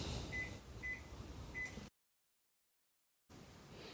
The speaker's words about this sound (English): And I'm going to throw that in the microwave for just a few seconds to melt it.